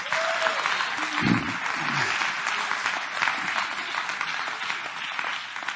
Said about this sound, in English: Oh, come on, clap your hands to the Lord and praise him.